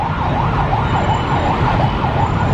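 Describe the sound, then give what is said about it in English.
An ambulance siren wails loudly in quick, repeating rise-and-fall sweeps over a steady rumble of street traffic in Ho Chi Minh City, Vietnam. “Shut the fuck up, ambulance.”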